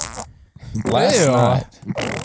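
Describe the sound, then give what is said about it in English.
A voice imitates a wet fart: a loud, sputtering blurt lasting under a second, with a wobbling pitch, framed by brief breathy mouth noises before and after. “That's the wet fart that just happened there.”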